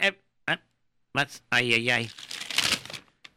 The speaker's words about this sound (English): Well, now let me just take this paper out